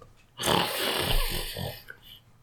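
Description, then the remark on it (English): A voice imitates loud snoring: one long, rasping, breathy snore of about a second and a half with a rough, rumbling flutter, then it fades out. “Smile goes away, and he just kind of like slowly lays back down and then closes his eyes and pretends to sleep, starts snoring again.”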